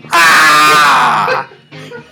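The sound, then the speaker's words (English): A loud, sustained human scream rings out for over a second, then cuts off, followed by a brief burst of quieter vocal sound. “And so with a great scream, I did grab the hand.”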